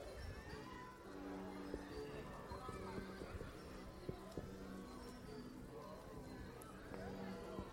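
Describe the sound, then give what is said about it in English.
Distant chatter from people at park parties, birthday parties, picnics and late lunches with family and friends, a steady blend of many voices at moderate level, with occasional sharp knocks and clatters. “You can hear the noise of parties, birthday parties, and picnics, and late lunches of family time and friend time.”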